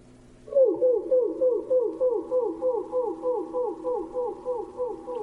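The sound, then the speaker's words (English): Wood thrush song slowed to one-tenth speed, from the left voice box alone: a low, steady train of swooping whistled notes repeating about twice a second, moderately loud, with no voices. “Here's another clip from a wood thrush, this time slowed down to 1/10 speed so that we can hear the contributions of the two separate voice boxes.”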